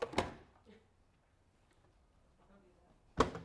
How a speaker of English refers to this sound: Not that she does that, but if she did, she's slamming doors.